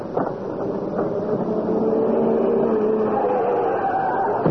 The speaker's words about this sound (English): What's that? It's a car.